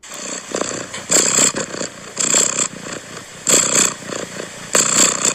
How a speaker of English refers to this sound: It's a cat purring.